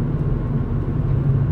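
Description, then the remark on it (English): Steady low engine and road rumble from inside a car driven at a safe pace along a very empty road with turns, a continuous droning hum with no voices, even and moderately loud throughout. “My, usually I drive this road, like, really fast because I like the turns on it, but we're keeping it safe.”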